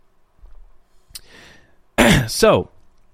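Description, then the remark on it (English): A small click and a quiet slurp of someone sipping water, then a short, loud voiced exhale like a satisfied 'ahh' right after swallowing. “let me take a sip of water.”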